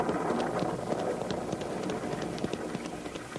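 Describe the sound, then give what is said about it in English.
A steady, moderately loud wash of light rain just beginning to fall, with scattered small ticks and patters spread across the whole stretch, no voices present. “We can still land dry. The rain's only beginning.”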